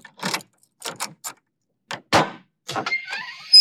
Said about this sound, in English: If you please, I shall now unlock the door.